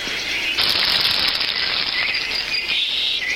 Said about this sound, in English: That's not my wife throwing a toaster that's plugged in into my bathtub. That's supposed to be a grill. You hear the birds, and just imagine the smoke wafting. The birds have been loud this spring.